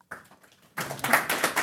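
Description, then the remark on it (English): An audience in a room applauds at an evening event after opening remarks: scattered light clapping at first, then swelling into a denser, louder burst of many hands clapping together, with no one talking. “We are getting applause from our audience in the room tonight, and I would like to begin with asking you a question about Taiwan's democracy.”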